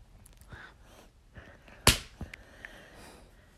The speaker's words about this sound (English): Not him slapping his thigh. Ow, that was my head. I feel abused.